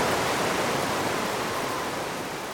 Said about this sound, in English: as she looked back, she saw rain pour from the sky and a flood of water coming straight for her.